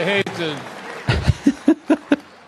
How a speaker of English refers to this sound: I hate to, what are you clapping for, that I am or I'm not? Well, I'm not.